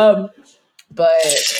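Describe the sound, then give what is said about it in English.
Ice cubes clink against the inside of a nearly empty glass, two bright ringing knocks separated by a brief pause, the second followed by a rattling shake and a hiss. “You drank the whole shit. Yeah, you hit ice. Clinking.”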